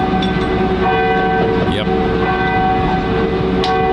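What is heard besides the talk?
church bells ringing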